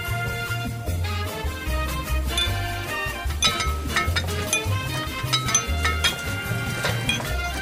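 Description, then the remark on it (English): Glasses clink repeatedly in bright, sharp taps scattered across a steady, bass-heavy musical backing, with no voices present. “And the clink of glasses means it's that time of the week again.”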